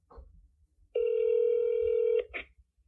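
A telephone line sounds a steady electronic ringing tone for over a second, with a short beep just after it and faint clicks before, as a call is dialed and connects.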